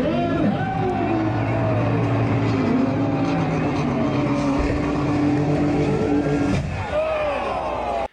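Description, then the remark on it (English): At a car launch event, a car engine roars loudly and steadily as cars are driven off the side of a mountain cliff, its pitch rising and falling, with a crowd murmuring underneath and a sudden shift near the end as the engine's tone drops away. “But they literally launch cars off of the side of a fucking mountain.”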